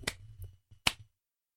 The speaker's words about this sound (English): Slow clap from behind you as Aaron brushes himself off.